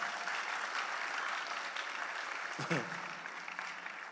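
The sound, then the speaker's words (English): An audience claps steadily to the glory of God, a dense, continuous wash of many hands applauding at an even loudness throughout, with a brief voice cutting in partway through. “You can give clap to the glory of God if you want to.”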